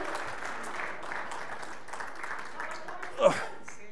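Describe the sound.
A crowd claps steadily for a few seconds for a participant after a hot-sauce guessing game, a dense wash of applause with a brief louder whoop or shout near the end, voices murmuring underneath.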